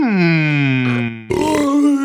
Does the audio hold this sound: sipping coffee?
no